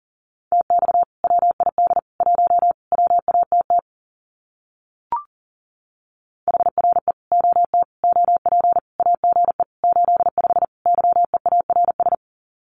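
Fast Morse code at 40 words per minute sending common QSO phrases: a single steady mid-pitched tone keyed in rapid dots and dashes, two long runs split by a short pause with a brief click, no voices.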